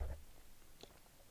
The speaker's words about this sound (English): Sorry if y'all can hear me swallowing my drink. My bad. A little free ASMR.